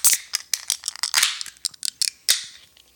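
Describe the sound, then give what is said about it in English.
A beer can is opened: a run of sharp metallic clicks and crinkles, then a crisp crack followed by a brief fizzing hiss that quickly fades. No one speaks. “Let's grab our glass and grab our can and let's open her up.”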